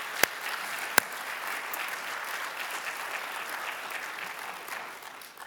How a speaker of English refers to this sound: Because at General Assembly in 2013, Dr. Gustavo Crocker was elected the 41st General Superintendent in the Church of the Nazarene. And you can give him a round of applause for that.